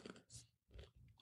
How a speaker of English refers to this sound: I keep like moving the mic away and bringing it because I'm like chewing like no other.